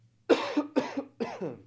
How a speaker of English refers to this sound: I'm a little sick and I'm about to cough, so I apologize.